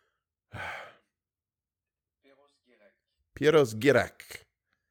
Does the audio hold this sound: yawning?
yes